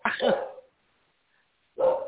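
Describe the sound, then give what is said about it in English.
Two loud dog barks separated by a second of near silence, each bark sharp and full with a slightly drawn-out, yelping tail. “Is that your dog?”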